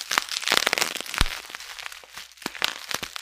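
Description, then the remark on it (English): Plastic packaging is torn open, crinkling with a steady run of sharp crackling bursts and rustles, including one loud rip near the middle, and no voices. “Was trying to open it before you hit the record button.”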